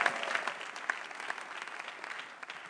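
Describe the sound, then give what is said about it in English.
A crowd claps steadily for nearly three seconds, giving thanks to Jesus, a dense, even patter of many hands with no voices rising above it. “Clap your hands better than what you're doing now.”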